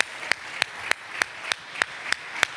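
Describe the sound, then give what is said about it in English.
A church audience stands and claps in steady unison to thank God, sharp hand claps landing on a regular beat about three times a second over a faint wash, with no voices. “I think we ought to stand for a moment, clap our hands, and thank God that he will gift us with the gifting that will make a difference in people's lives.”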